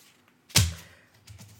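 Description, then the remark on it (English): A single sharp slap of a post-it note slammed onto a hard surface, with a low thud that quickly fades, followed by a brief, softer ripping rustle as the post-it note is ripped off. “Yeah, being that was me slammed down. Viciously ripping off my post-it note.”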